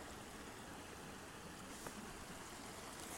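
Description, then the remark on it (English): Water rushes steadily over rocks in a brook at a duck sanctuary, a continuous, hissing wash, fairly soft and unbroken throughout, with no voices. “What is so soothing about the sound of water running over rocks?”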